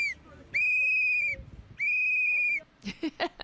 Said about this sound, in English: Oh, it's terrible. It's terrible that somebody blew a whistle in your ear. So she should have moved. She don't like it. Let her move.